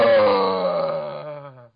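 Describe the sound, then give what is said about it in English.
A man lets out a loud, drawn-out moan lasting under two seconds, his voice sagging slightly in pitch before it cuts off abruptly. No words are spoken. “Evidently, we just heard him. He's just moaned like nobody's business.”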